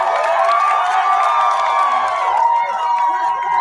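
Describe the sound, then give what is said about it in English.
A crowd cheering and whooping steadily for people buying Apple products at the Apple Vision Pro launch, many overlapping voices forming a loud, sustained roar that holds at an even level from start to finish. “I mean, who would have thought that we would be cheering people for actually buying Apple products?”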